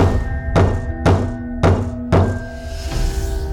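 Slow knocking on a front door: four heavy, evenly spaced thuds, each dull and resonant, followed by a fainter fifth, with a steady low hum running underneath.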